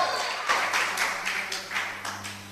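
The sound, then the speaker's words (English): An audience in a church claps and shouts together in a shout of faith to the Lord, a dense wash of crowd noise that swells in rhythmic surges about twice a second, with a low steady hum underneath. “Oh, give the Lord a clap and a shout of faith in the church.”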